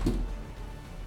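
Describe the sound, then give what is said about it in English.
A small dog door swings open with a soft, low thump, opened so a dog can come in and go back out, followed by a brief rustle and quiet room noise; no one speaks. “And Elric, it's your turn, and I'm opening the dog door.”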